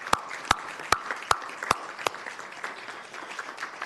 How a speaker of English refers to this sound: So I would like all of our youth workforce development programming staff participants to please stand and be acknowledged. And give them a round of applause.